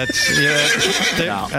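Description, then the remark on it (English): A horse whinnies loudly, a single shrill, wavering neigh lasting over a second with a rough, breathy edge as it trails off. “That's a horse.”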